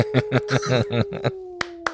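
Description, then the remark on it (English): A run of short, rhythmic vocal bursts over a faint steady tone, followed by two sharp, separate hand claps about a quarter second apart, clear. “want to play a game of hide and clap?”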